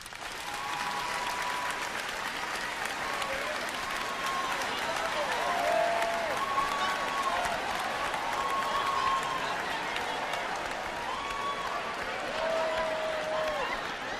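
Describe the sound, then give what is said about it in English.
A large audience claps steadily for about fourteen seconds after being asked to clap if they think they would go to heaven: a dense, even roar of hands, with scattered voices and a few high cheers rising above the applause. “How many of y'all think if the world were to end right now, clap if you think you'd go to heaven?”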